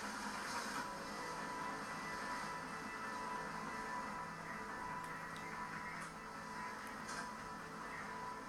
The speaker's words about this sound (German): Ich höre diesen scheiß Hubschrauber schon wieder.